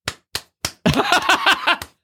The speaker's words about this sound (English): I've been practicing a lot. You've been practicing clapping? Yes, because I was red for filth. I got fucking dragged for my clapping.